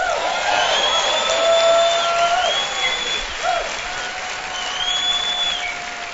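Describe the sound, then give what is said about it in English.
Sustained audience applause welcoming radio listeners joining from coast to coast on over 300 CSN radio stations: a dense, steady wash of clapping with scattered whoops and cheers rising above it, holding loud for several seconds and easing slightly toward the end. “They'd love to hear from you, so would you welcome them, please?”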